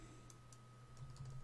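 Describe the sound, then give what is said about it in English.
A few soft, irregular keystrokes tapping on a computer keyboard, quiet, spaced unevenly over a steady low electrical hum with no one speaking. “Sorry, my keyboard was being stupid.”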